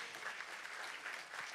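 A group gives a round of applause for a guest speaker: dense, steady clapping that holds an even loudness for the whole moment, a bright crackling wash with no voices standing out.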